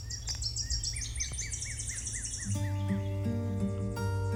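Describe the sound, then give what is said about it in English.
Birds sing and chirp outdoors on a forested bluff at Wyalusing State Park, Wisconsin, in quick, repeated high whistles and trills, several calls overlapping, with a steady low hum underneath and no voices. “Or you can come here where it's forested and you're up on a bluff and there are birds.”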